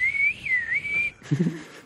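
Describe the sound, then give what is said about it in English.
A person whistles to call wolves: one clear, sustained note that dips and rises slightly in pitch for about a second, then breaks off into a short burst of muffled low noise. “You can speak wolf. Or they can speak, you know, whistle.”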